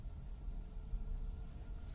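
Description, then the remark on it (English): A low, steady rumble of road and cabin noise inside a moving electric car with no engine, on a long drive, quiet and even, with a faint hiss above it and no engine roar or voices. “One of the benefits of driving this electric car is that I can talk to myself and there won't be too much engine noise in the background because there is no engine.”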